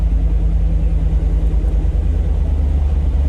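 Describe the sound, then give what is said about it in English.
A deep, steady engine rumble from an idling Power Wrangler with 450 pound-feet of torque, with a strong low bass drone and constant loudness throughout, no voices present. “The bass note on that thing pretty is awesome.”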